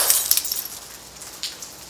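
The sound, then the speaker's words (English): A glass window is broken to reach and twist a doorknob: a sharp crash at the start, followed by scattered tinkling shards, then a brief bright clink near the end. “I broke the glass window to twist the doorknob.”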